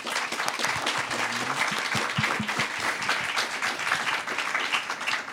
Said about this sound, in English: So with that, I'd like to have a big round of applause for our three panelists.